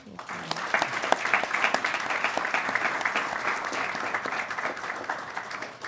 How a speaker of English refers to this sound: Great, and round of applause for our panelists.